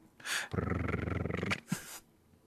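animal, cat purring

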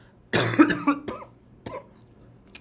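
human body sound, cough

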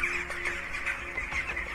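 bird, many birds squawking

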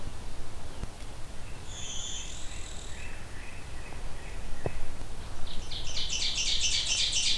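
bird, ovenbird song

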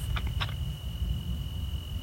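insect, crickets chirping

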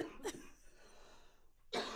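human body sound, coughing

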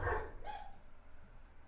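animal, dog barking

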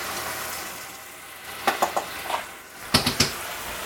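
food or drink, food frying

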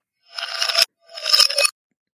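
household object, ice cubes

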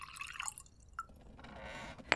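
food or drink, drink being poured

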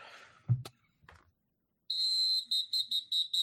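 sound effect, slide whistle sound effect

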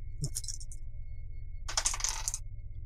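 household object, dice being rolled

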